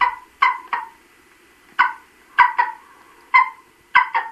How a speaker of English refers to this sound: Examples? Well, here's the majestic golden eagle.